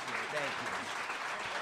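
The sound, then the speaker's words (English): An audience applauds Dalton Castle and Bruce Pritchard steadily, a dense wash of clapping hands filling the whole moment, with faint voices murmuring and calling out beneath the noise. “Ladies and gentlemen, let's give a big round of applause to Dalton Castle and Bruce Pritchard.”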